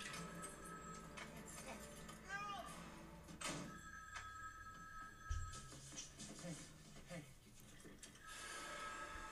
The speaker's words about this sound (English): And that phone!